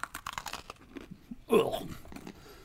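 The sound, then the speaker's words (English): A crisp bite into a crunchy carrot-cake-flavored sandwich cookie with a sharp crackling snap, followed by several softer crunchy chewing sounds that fade out, heard alone without talking. “Not gonna lie to you, it tastes exactly like a carrot cake. But crunchy.”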